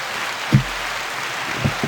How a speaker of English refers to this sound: Yes, we have an applause button.